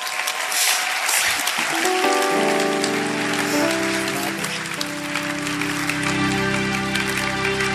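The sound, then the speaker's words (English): Steady, dense audience applause at a church service fills the whole clip, loud and continuous, while sustained keyboard or organ chords swell in underneath after about two seconds. “Please clap for the only”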